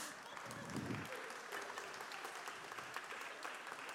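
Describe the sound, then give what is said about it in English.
An audience claps steadily for about four seconds, a dense, even patter of many hands at a moderate level, with a brief low murmur near the start. “Give them a clap.”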